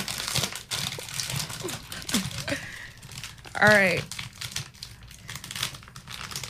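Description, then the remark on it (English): A plastic food bag being opened crinkles and rustles steadily, a dense crackly texture running through the whole moment, with a brief spoken remark and a short vocal sound breaking in midway. “Do you mind if I open the bag?”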